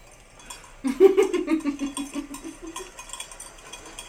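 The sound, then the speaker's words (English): A small bell on a goat clanks rapidly and rhythmically as the goat runs, chasing a man around a tree in a village; the strikes are steady, then fade out over a few seconds. No one speaks. “I love that his bell is ringing.”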